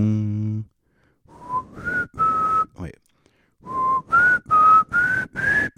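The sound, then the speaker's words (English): A person whistles the X-Files TV theme, a slow, eerie tune in two phrases of sustained, wavering notes separated by a short pause, clear, after a brief spoken word at the start. “That's X-Files, because like in this infinite universe, we're also in the Matrix.”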